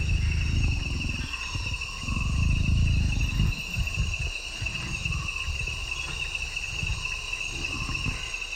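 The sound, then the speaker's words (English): A jaguar not too far off breathes and growls through the night: low, rhythmic breathing and rasping growls pulse in repeated bursts, then fade, beneath a steady high chorus of crickets and insects. No one speaks. “But he had that rhythmic kind of combination of breathing and growl the whole night.”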